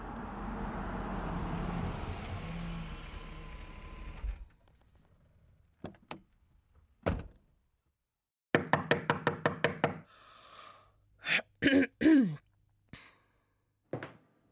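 Sharp knocks on a door at night, starting as a few scattered raps, then a quick burst of rapid knocking and more heavy thuds, following a stretch of rushing background noise.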